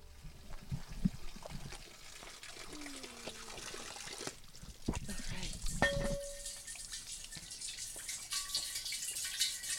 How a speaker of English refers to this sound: So we're here at the spring. What town are we in again? This is Harwinton, Connecticut. And we're at a spring right on the side of the road that is coming out right from under somebody's house, basically.